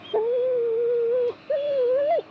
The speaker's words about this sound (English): Oh, the dog got eaten by the fangs. Poor dog. It's still making a lot of noise for being dead. The things are taking their time. That much blood came out of a dog and it's still making that much noise? It sounds like the dog is fighting back.